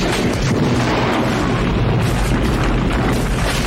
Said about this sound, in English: So many explosions. It gets to the point where it sounds like the enemy is actually having fun at this point.